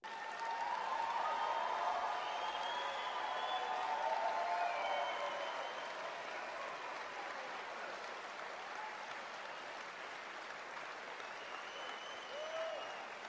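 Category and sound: crowd, applause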